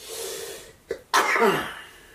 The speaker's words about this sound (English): Oh, yeah, it's the weather. Oh, you just like take a deep breath. Suck it in. Cough it out.